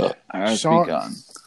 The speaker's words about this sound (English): Keep burping in my ear.